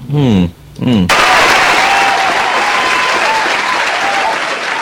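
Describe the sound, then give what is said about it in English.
A voice speaks briefly, then loud, dense applause breaks out suddenly and continues steadily for several seconds, sounding like a large crowd clapping. “I think everything that I do, people are applauding.”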